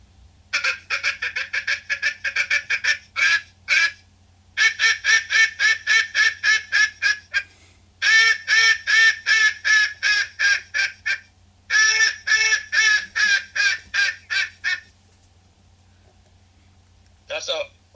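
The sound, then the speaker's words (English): A hand-made bamboo duck call with a hard rubber reed, filed down by hand, blown in rapid, rhythmic bursts of raspy quacks, loud, in several long runs with short pauses between, ending with a brief final burst. “I was gonna say if it wouldn't kill a duck, the way they made those calls back then, we wouldn't have such things as the duck stamp and the migratory bird treaty.”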